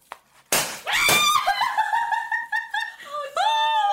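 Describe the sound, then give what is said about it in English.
A single sharp, loud burst from a glitter cannon popper, a bottle held upright, goes off, followed immediately by high-pitched squeals and excited laughter from several people. “That's why you got the cannon.”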